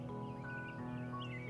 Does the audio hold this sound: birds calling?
yes